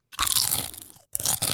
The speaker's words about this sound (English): Good crunches.